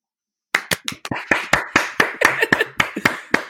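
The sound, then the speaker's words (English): A quick burst of loud hand clapping, done live by hand instead of with a clap sound button, starts after a brief silence, a dozen or so sharp claps in a fairly steady, rapid rhythm, with no voices over them. “We have a button to hit the clap, but somebody didn't put it in.”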